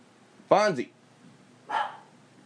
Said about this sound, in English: Dog's barking. Fonzie, it's just the mailman.